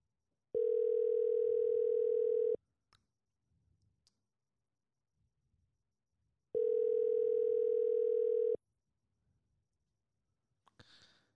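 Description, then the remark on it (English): A telephone ringback tone sounds twice, each steady, buzzy burst lasting about two seconds with a long silent pause between, followed by faint clicks and a soft rustle at the end. “It was the not ringback tone.”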